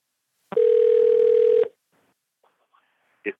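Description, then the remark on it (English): A loud, steady telephone tone sounds for about a second as a phone call is placed to the speaker's father, then cuts off, followed by a few faint clicks and one short electronic blip near the end. “Calling Dad. Let's make this thing ring.”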